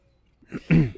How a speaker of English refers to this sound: Dude, it won't, like, this loose cough will not go away.